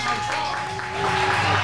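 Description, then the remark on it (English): A short burst of steady crowd applause, dense and fairly loud, holding an even wash of clapping with a faint tonal hum underneath and no voices. “Yeah, I get my own round of applause.”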